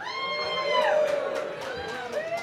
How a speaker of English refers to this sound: I'm curious to hear which of the beers that you tasted this evening you like best. So you can vote by cheering and raising your glasses. Who especially liked the 60-minute IPA?